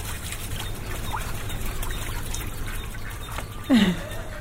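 Two geese, one white, bathe in a bucket of water beside a lamb shed, splashing and beating their wings, making a steady sloshing and dribbling with a louder burst near the end. No one speaks.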